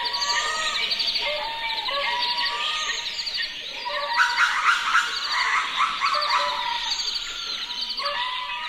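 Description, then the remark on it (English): A dense, continuous wildlife chorus of buzzing insects, chirping birds and lemur calls in a spiny desert region of southern Madagascar, with overlapping rising and falling cries that swell louder midway before settling again, and no talking. “We leave you this week with a mix of insects, birds, and lemurs that inhabit a spiny desert region in southern Madagascar.”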